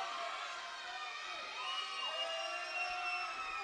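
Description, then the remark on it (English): A wrestling crowd cheers steadily during a match between George South and Axel Jaggers, a dense roar of many voices with high shouts and whoops rising and falling over it, loud and unbroken from start to finish. “Uh-oh, Max Carnage is not liking the crowd response to this.”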